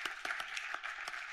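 An audience at the Sports Business Radio Roadshow breaks into applause for title sponsor Boingo, a dense, steady patter of many hands clapping with a few sharper claps standing out, moderately loud and with no voices over it.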